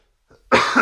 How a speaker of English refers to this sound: Another thing is I might cough.